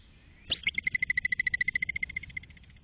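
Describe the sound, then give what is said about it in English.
A woodchuck (whistle pig) alarm whistle, made when scared to warn others: one sharp, shrill whistle, then a rapid series of about twenty high, even-pitched chirping pulses that gradually fade. No one speaks. “So yeah, this is what they sound like when they make a whistling noise.”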